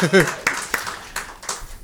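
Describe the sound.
A few scattered, sparse hand claps from a small audience, sounding fairly close, following a brief bit of talking at the start rather than a full sustained round of applause.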